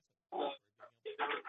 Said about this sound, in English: Hey, can you keep your dog quiet? Because people say it drives them crazy when the dog barks.